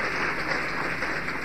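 A crowd applauds for God steadily, many hands clapping at once in a dense, continuous wash of sound that stays even and fairly loud throughout, with no voices standing out.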